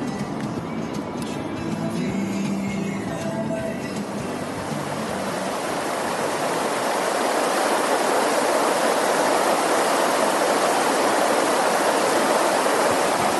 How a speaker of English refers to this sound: To me, there are few sounds better in life than rushing water. I'm down here on the farm right now.